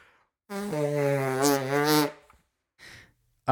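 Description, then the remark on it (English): A person imitates the call of the 52 hertz whale with a sustained, droning hum lasting about a second and a half, its pitch wavering slightly, followed by a short breathy exhale and a faint rustle. “Was that the 52 hertz whale? Is that what I heard?”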